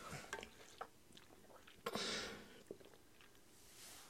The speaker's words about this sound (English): and because I'm not editing this, congrats, you're gonna hear me chug from my water bottle looks like a baby's bottle. I realized too late. I've been using it for 2 years, and now I'm like, oh, it looks like you're drinking from a bottle.